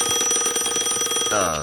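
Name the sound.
telephone ringing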